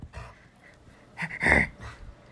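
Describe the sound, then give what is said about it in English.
A puppy named Zappa pants in short, breathy bursts, then lets out a brief high-pitched whimper near the middle before the panting resumes. Fairly quiet, with no talking. “You can make your cute little puppy noises, but you don't need to bark.”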